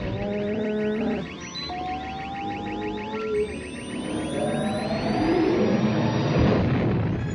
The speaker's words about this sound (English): I'm going to make a jump to light speed.